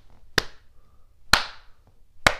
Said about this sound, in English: Because this is your round of applause. It's the slow clap. The slow clap, yeah.